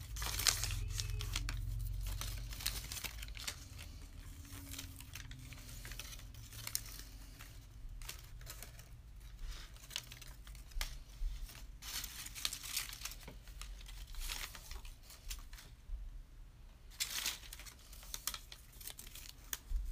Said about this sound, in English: So take these pieces of paper that you just cut, ripped, whatever, throw them away.